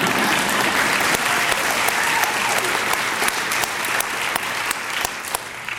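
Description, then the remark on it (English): Steady audience applause at UC San Diego for the news that women faculty lead in generating research dollars. A dense wash of many hands clapping with sharp individual claps popping out, holding at a fairly loud level for about six seconds and easing slightly at the end. “That should have gotten a round of applause.”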